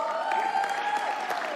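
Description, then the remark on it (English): A large church audience claps steadily, a dense wash of many hands at moderate volume with a faint murmur of voices underneath. “If you can't set the ball, don't clap.”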